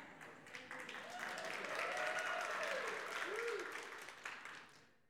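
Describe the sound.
A crowd applauds steadily for about five seconds, the clapping swelling in the middle and then fading away, with a few voices whooping and cheering over it.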